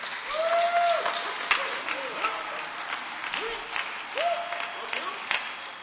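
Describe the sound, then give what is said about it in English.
The audience of St. Matthew's Baptist Church applauds steadily as a man comes forward, a dense wash of many hands clapping with scattered voices and brief whoops rising over it, holding a fairly even loudness throughout. “Give him a hand clap as he comes.”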